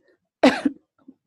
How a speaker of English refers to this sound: Start off with a cough.